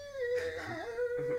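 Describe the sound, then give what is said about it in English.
A voice imitates a bathroom door creaking as it is half shut: one drawn-out, squeaky tone that wavers and bends in pitch for over a second, with no talking. “And as it's closing and we both stop talking and the door goes...”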